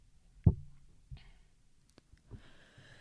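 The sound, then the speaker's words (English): One loud, abrupt sneeze bursts out at the start, followed by a few soft clicks and breathy sniffing noises. No one speaks. “A nice sneeze on the podcast.”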